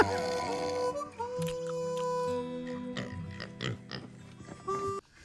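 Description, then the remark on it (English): A pig in a played video makes a run of loud, strained grunts and squealing, nasal noises that carry on almost without pause for several seconds, with a few sharper bursts near the end. No one speaks. “That pig has fucking GERD.”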